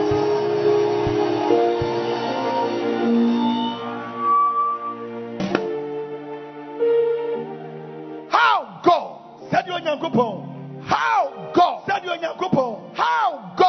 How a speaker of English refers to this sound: And if you believe in what I'm saying. I want you to clap your hands. Lift up your voice. And give Jesus a shout of victory.